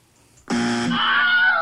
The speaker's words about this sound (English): Listen, is that a buzzer?